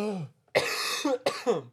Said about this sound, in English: Oh my god, I got a cough.